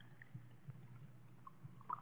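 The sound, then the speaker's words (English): Beer being poured: a soft, steady liquid rush lasting about two seconds, with a few faint gurgles and splashes near the end, and no voices. “And you are warming that beer with your hot little hands. Pour it, please.”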